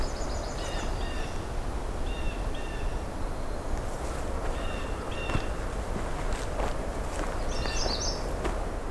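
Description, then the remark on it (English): A magnolia warbler sings short, high, sweet phrases, repeated about four times over a steady rushing background hiss. “Oh, we got a magnolia warbler.”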